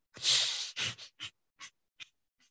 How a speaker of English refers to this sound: And then back to the nose breathing. Ready?